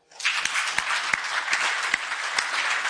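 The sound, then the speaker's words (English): A crowd bursts into steady applause in answer to a question about having felt busy, burned out or lacking energy, dense overlapping claps forming a bright, sustained wash of sound with a few sharper individual claps standing out, lasting the whole few seconds without talk. “Have you ever in your life gotten to a place where you have either these three things, by round of applause, have either felt busy, burned out, or lacking energy.”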